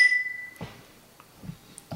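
A single bright clink of glasses raised in a toast rings out at the start and fades over half a second, followed by a few soft, muffled knocks and rustles.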